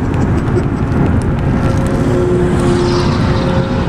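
A car drives along a road in Dallas, its engine and tire noise a steady, loud low rumble with a faint humming tone that rises in the second half. No one speaks.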